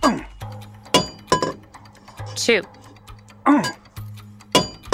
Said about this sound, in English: He placed the planchette, the blank coin, on the anvil die. I must get the alignment perfect. There. Holding the top die in place, he swung the hammer, bringing it down on the die and stamping the image into the metal.